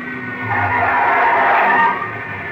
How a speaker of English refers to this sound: watch out. There's another car coming in.